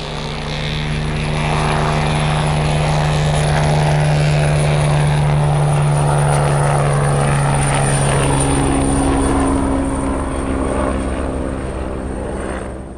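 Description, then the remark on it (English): A loud helicopter drones steadily, its rotor and engine roar filling the air with a constant low hum, the pitch shifting slightly as it passes, as guards in helicopters hunt two people escaping on skis through a forest; no voices. “she drops from the cable, and the two make a dramatic escape on skis through the forest and over a cliff, as they are hunted by guards in both snowmobiles and helicopters.”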